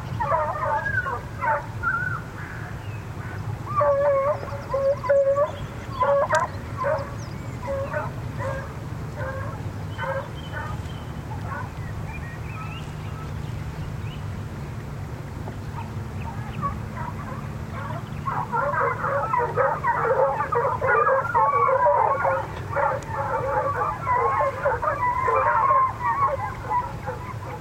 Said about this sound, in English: Unless an appeal is successful, fox hunting with dogs, like these giving chase near Hound Tor, England, is to cease in 3 months, according to an act of the House of Commons.